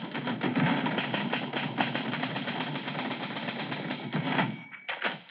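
A typewriter clatters in a fast, steady stream of keystrokes for about five seconds as a newspaper editor types in the living room of his house, the dense clacking briefly thinning near the end before resuming. No one speaks.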